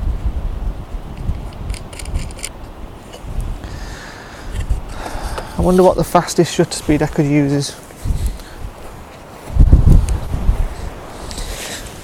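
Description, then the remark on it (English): Gusty wind buffets the microphone outdoors, with low rumbling bursts rising and falling throughout and a strong gust near the end, while a man talks briefly in the middle. “What a terrible, windy situation I found myself in.”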